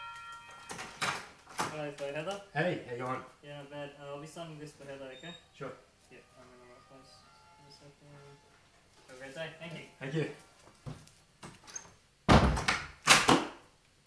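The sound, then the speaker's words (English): Muffled voices talk for a while, then a front door opens and shuts for the postman with a couple of loud thuds near the end. “Someone's at the door.”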